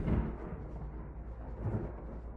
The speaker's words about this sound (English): It's raining really hard outside your house now, so I got super sidetracked. Oh, here comes a big thunder.